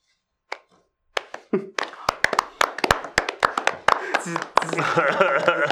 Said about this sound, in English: Slow claps all around.